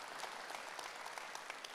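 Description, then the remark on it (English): A church audience claps steadily, a dense patter of many hands that fills the whole moment, soft, with no voices on top. “Oh, some of y'all still clapping.”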